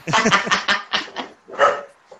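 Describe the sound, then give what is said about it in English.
A dog barks in a quick run of short, sharp yelps, about six or seven in rapid succession with a brief pause before the last one, fairly loud. “That was the actual dog.”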